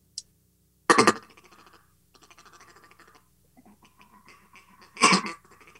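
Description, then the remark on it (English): A championship duck call blown in a mallard feeding call: rapid, rhythmic chattering clucks running for several seconds, bookended by two louder, raspy bursts. “the mallard feeding call.”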